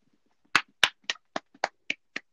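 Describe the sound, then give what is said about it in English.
Seven sharp hand claps for Drake Maverick's Lifetime Achievement Award ring out in a fairly steady rhythm, crisp, with slightly quicker spacing toward the end and faint low murmuring underneath. “Just give him a clap.”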